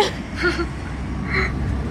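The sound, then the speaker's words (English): A big truck rumbles past, a steady low roar under broad road noise, with two brief whining tones rising briefly above it. “sorry, big truck going by.”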